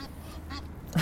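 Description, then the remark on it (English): Large waterbirds honk in short, repeated calls, three or so in about a second, with the last one loudest, against a steady outdoor background. “Look at how excited Bowler is by these large birds.”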